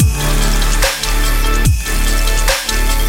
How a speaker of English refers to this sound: The snares are layered with water, and I think it's also